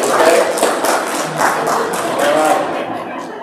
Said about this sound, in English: And I just want to give her a little round of applause and our other helpers and our volunteers.